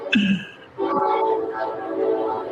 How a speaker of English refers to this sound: Here comes the Breitbart train. So I don't know. I guess you can hear that, Doc. Can't help but hear. Train go by.